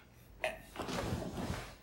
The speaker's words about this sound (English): That's me shifting in my chair in the castle. It's lovely. It's a ox blood. It is an ox blood, yes.